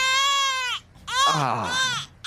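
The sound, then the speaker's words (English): A man's voice imitates a wailing baby cry in two drawn-out, high-pitched bursts, the first steady and the second wavering, with a brief pause between them. “That was an actual man trying to do a baby noise right there.”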